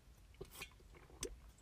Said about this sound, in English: Anyway, sorry, I had to take a water break.